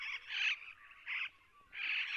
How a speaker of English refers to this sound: And some small parrots jetting back and forth between the trees, called the superb parrot, that kind of rolling, churring sound.